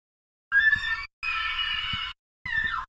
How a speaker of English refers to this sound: Just an elk out there in the rut. Yep. Screaming. They make some pretty terrifying sounds.